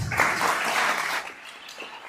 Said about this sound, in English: Clap now if you thought this was funny.